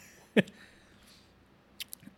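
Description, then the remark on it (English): A single wet slurping sip of bourbon, then near silence before a couple of faint, quick mouth clicks. Nobody talks. “All right, I'm gonna go ahead and get this sip in here.”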